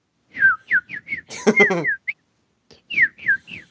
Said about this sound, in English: And in between him saying, "Well, no matter who I am," and then "here goes," you hear birds tweeting. Well, no matter who I am, here goes. In the background.